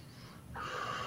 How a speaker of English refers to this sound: There you go. Breathing it out.